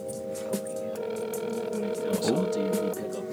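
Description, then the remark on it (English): A phone line ringing out, a steady electronic tone humming through a handset speaker for a few seconds with nobody picking up, over faint background noise and murmuring. “I'm going to call X. Let's see if this man answers the phone.”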